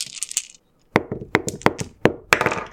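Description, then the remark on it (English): A set of metal dice is dropped into a blender jar: a bright jingling rattle, then a series of sharp, ringing clinks and thuds at irregular intervals, fairly loud, with no talking. “So let's put in the first metal set.”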